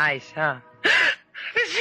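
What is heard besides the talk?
sneeze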